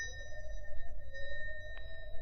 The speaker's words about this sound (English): Find a bell button. No, there's a bell pull.